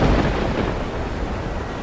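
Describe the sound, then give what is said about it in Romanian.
A loud, deep rumble of thunder rolls through a stormy roar, heavy and continuous for the whole moment, fading only slightly, with no voices present. “Au întâmpinat o furtună și nu o furtună oarecare.”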